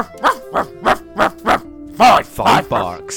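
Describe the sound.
A person imitates a dog barking with a quick, evenly spaced string of loud, close woofs, the last few rougher and more run together.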